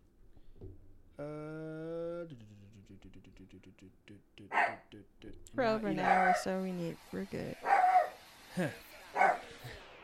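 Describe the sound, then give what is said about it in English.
A dog lets out a drawn-out whine, then several sharp barks, breaking in and out over a man's conversational speech. “That's when you want to start barking.”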